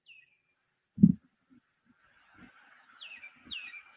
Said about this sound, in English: Sounds like spring birds. Yeah. What the heck? I was looking for them up in the trees. Right. Seriously. It sounds like May morning. It was one little birdie was up there just singing his little heart out.